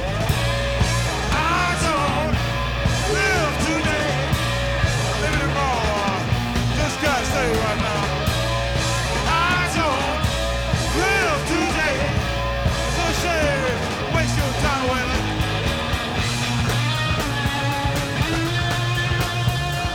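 A live rock band plays loud and dense, an electric guitar wailing with bent, swooping notes over pounding drums and bass, sustained without a break for the whole stretch.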